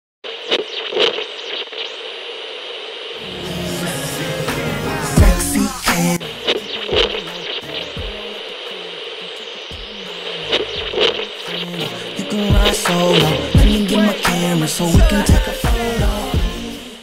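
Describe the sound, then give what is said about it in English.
Harsh radio static hisses and crackles for about seventeen seconds, a steady high-pitched whine under sputtering bursts and scratchy pops that grow rougher and louder toward the end. No voices come through. “Now, unfortunate once again that we have too much interference out there from the Universal Infinite or what have you to be able to get in touch with him.”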